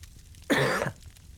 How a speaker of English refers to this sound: I just saw your struggle, like, you coughed, yep, and then went to mute. And yeah, it did not add up, yes. Yep, I had to block the cough first, and that threw me off.